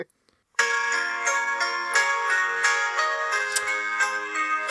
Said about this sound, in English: I'm gonna put on a bit of music in the background now to set the tone